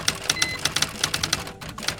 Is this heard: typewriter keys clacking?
yes